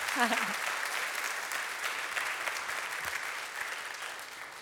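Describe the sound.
An audience applauds steadily for several seconds for a group of students, a dense, continuous patter of many hands clapping at an even loudness, with a brief voice heard at the very start.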